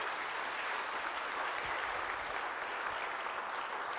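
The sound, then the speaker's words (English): A crowd claps steadily in a dense, continuous round of applause for the property maintenance team and their helpers, holding at an even level for several seconds, with no voices standing out. “I think we should give a round of applause now for the property maintenance team and all those that have helped them for so many weeks.”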